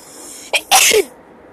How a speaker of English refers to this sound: So I feel a sneeze coming on.